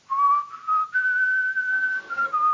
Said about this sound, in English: People wanted to see how I whistle. That's how I do it, out the side.